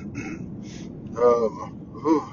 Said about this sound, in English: Clear my throat before I officially start.